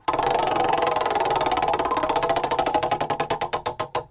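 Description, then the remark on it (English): A prize wheel spins with a rapid, loud run of ratcheting clicks that gradually slow and spread apart as it winds down, heard alone without any talking. “We've already covered some ground here, but let's go ahead and fire off the wheel and get going here.”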